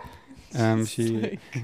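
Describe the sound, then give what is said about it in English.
A female dog barks three times in close succession, loud and fairly drawn-out, each bark a full, tonal 'woo' with a short gap between, and no one talking. “She's actually like the most scared dog, but she has a big bark.”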